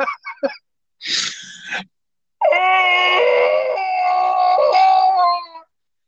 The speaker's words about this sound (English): Is that a guy screaming on fire?